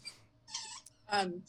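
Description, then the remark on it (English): A dog plays with a squeaky toy, producing three or four short, shrill squeaks in quick bursts, moderately loud, over a faint low murmur. “It's the dog's playing with the toy, huh?”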